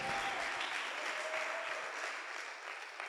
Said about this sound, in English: If you believe it, clap your hands one more time and celebrate Jesus.